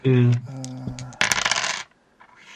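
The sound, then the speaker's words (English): A handful of dice spills onto a hard table, a bright burst of rattling clicks lasting about half a second, preceded by a short humming tone. “Let me see if I have enough dice here.”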